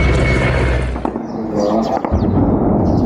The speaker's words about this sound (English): As birdsong and artillery fire echo.